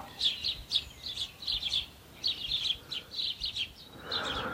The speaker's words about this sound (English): As well as these sparrows, which there are a lot of, I think there's a family of robins about to fledge as well.